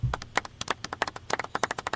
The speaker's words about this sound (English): Thanks, that's, guys. That's all of our listeners clapping for us, celebrating, and we love you guys.